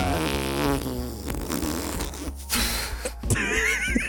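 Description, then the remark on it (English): A big, drawn-out fart rumbles and sputters for several seconds, loud, its pitch wobbling and shifting as it goes, with no talking over it. “He just did a big fart.”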